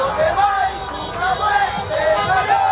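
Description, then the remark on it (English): A dense, flag-waving crowd of Cuban American protesters fills a major street in Florida with continuous loud shouting and overlapping voices, a steady roar of many people chanting and calling out with no single voice standing clear. “So you can hear there the flag-waving crowds tanking to the major streets in Florida in solidarity with the massive protests that are happening just over the water in the Caribbean in Cuba.”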